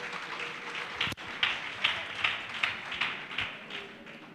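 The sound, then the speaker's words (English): A crowd claps for Jesus in a steady rhythm, roughly two or three beats per second, bright sharp hand claps layered over a broad wash of crowd noise, with one louder sharp crack early on. “Clap your hands, clap for Jesus.”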